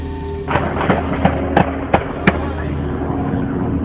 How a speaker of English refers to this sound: But this time, authorities fired back. You're about to hear the actual gun shootout.